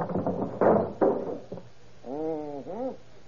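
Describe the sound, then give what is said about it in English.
Several heavy hammer blows strike a wooden door to knock it off its hinges, two or three irregular thuds, followed by a couple of drawn-out, meow-like cries. “Hey, what are you trying to do to that door? Take it off the hinges.”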